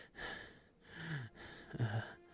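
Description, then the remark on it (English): Heavy, ragged breathing in the aftermath of a fight: three or four loud, gasping breaths in quick succession, some with a slight voiced catch, and no talking. “So, yeah, you're sitting in the aftermath of this fight. Bonnie's, like, breathing heavily.”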